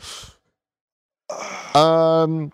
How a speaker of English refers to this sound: Oh man, I was going for the yawn into the arm.